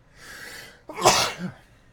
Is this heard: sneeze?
yes